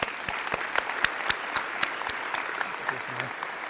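A crowd applauds steadily as a child is called forward to be recognized, with dense overlapping claps and a few sharper, louder hand claps standing out at an irregular rhythm throughout.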